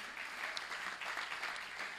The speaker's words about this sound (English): For those who know us, if you could clap for one of us, it would certainly be for her.